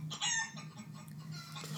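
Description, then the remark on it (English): Chickens cluck and squawk in a brief, busy burst, with a steady low hum running underneath. “They're clucking.”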